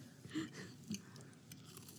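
A crisp bite into a thin, crumbly cookie with a crunchy edge, then a few soft chewing crunches. The sounds are quiet, with no talking.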